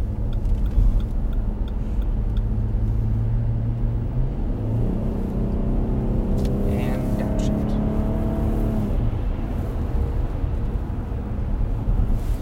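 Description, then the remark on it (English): A car cruising along Highway 2 toward Lincoln at about 45 mph with no other traffic, heard from inside: a constant low engine and tire rumble, with the engine's pitch shifting and climbing for a few seconds midway before settling back. “Highway 2. There's no traffic coming, so...”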